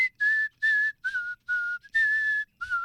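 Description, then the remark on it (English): Someone whistles a short tune, six clear sustained notes at slightly shifting pitches with brief breaths between them, and no talking. “Yeah, you give me any song and I'll whistle.”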